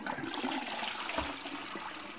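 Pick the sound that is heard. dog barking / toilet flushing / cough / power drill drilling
toilet flushing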